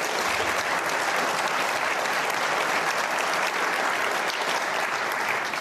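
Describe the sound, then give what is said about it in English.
An audience applauds a speaker with sustained applause, a dense, even wash of many hands clapping at steady loudness for several seconds with no voices standing out. “I would not encourage this guy, please. Do you remember? I mean, applauding him.”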